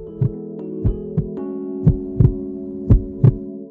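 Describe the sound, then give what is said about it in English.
Mo's steady heartbeat, playing a steady four-on-the-floor pulse, thumps in paired low beats, about once per second, prominent over a continuous humming drone underneath. “In the middle of it all was Mo, with her heartbeats playing a steady 4 on the floor.”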